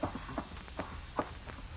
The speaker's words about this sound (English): And then you hear footsteps down the hall.